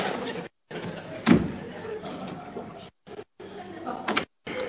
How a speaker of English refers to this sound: Oh, darling, that was the front door.